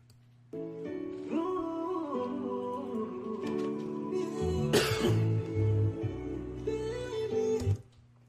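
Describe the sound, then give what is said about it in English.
A single sharp, loud cough bursts out partway through over steady, sustained music that plays throughout and fades at the end. “That wasn't Corona. That was just a cough.”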